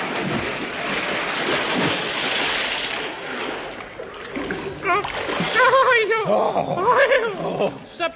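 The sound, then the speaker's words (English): A heavy crash and big splash as a horse and rider fall past tripwires and an iron girder into deep water, with loud churning and sloshing for a few seconds, then agitated cries and shouting over the settling water. “What fool put tripwires and iron girder and deep water in our way?”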